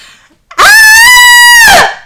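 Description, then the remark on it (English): Three people imitate a blood-curdling banshee screech: a piercing, high-pitched human screech held for over a second, very loud, that rises sharply, sustains, then drops off. “Just straight up screeched like a banshee.”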